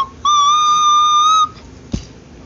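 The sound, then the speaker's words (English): A voice makes one long, steady, high whistling note, like an imitation of a bird call, holding for about a second before stopping; a brief dull thump follows. “I sounded like a bird.”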